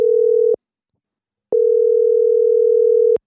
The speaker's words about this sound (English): The phone's out. It's plugged into the mixer now. Okay. Ringing.